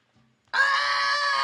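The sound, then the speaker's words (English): A person imitates a pig's squeal with a sudden, loud, high-pitched sustained shriek that holds steady for about a second after a brief faint murmur. “Now that you're a fucking pig, you got to squeal for us like a little piggy.”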